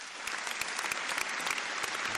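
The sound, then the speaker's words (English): Steady applause from a crowd, dense overlapping claps forming a continuous bright wash at a fairly even volume throughout, with no voices standing out. “Round of applause.”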